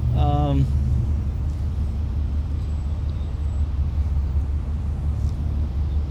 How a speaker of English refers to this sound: This old bird don't like this heat. I'm looking at that gauge and she ain't happy. It's going up. Yeah. Just when we pass the Mandalay Bay here, we'll pull over and let her cool down for a little bit. It's the beauty of driving classic cars.